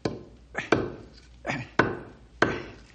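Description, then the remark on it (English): A knife whittling wood, making about six crisp, sharp cuts at an uneven pace, each a short scraping stroke that fades quickly. The sound is moderately loud, with no talking. “Gotta whittle this down a bit.”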